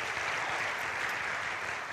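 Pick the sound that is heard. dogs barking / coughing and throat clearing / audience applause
audience applause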